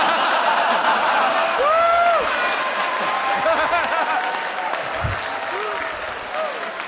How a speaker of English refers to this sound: Stop, stop. Stop clapping. I'm terrible.